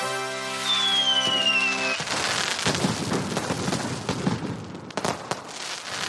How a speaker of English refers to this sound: I'll put fireworks and shit. Okay, fireworks.